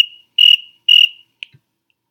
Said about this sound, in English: Can we get another cricket, please?